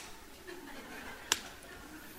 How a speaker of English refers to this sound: When you don't have enough business, we have a slang call. I just spend time slapping mosquito on my lap. Because you don't have customer, you just sit there, and then because mosquito come to your lap.